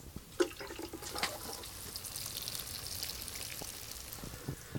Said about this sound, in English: I am just in my greenhouse, giving everything a really good watering here. It's been a busy day today, and it's been a hot day, which is why everything in here is thirsty.